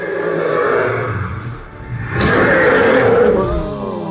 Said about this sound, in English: The final touch would be added by audio engineers, a whistling shriek and a mighty roar.